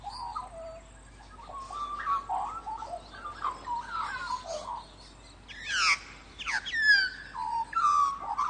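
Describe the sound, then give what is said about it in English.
A bird sings a continuous territorial song of fluting, warbling phrases with rising and falling whistles, clear, with no one talking. “so that when you set up a territory, it is clearly a different territory and a different song. So you get regional variations, you get territorial variations, and each has a stamp of individuality and of that bird on it.”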